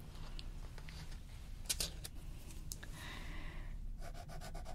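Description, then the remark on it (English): Quiet scratching of a fine liner pen colouring a page of a colouring book: scattered short strokes, then a quicker run of back-and-forth strokes at the end, over a steady low background hum. “I suppose you should probably use colored pencils, but I much prefer using fine liners.”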